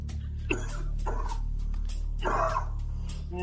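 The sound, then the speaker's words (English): A puppy gives a few short, high yips and barks mixed with whimpering, heard over a steady low hum, moderately loud. “Wow, that's another puppy, guys. Another puppy.”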